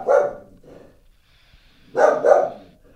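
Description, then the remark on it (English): A dog barks: one loud bark, a softer follow-up, then a quick double bark after a short pause, with quiet between. “The barking isn't part of the opening reading.”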